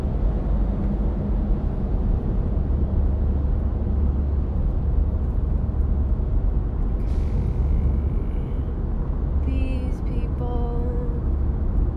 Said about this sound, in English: do they have 4 lanes going to 2 in the tunnel? Like, who thought of that? Have it happen outside the tunnel? Jesus. Right lane ends in 500 feet. Great! Well, that's why we've been fucking stuck in traffic this whole time.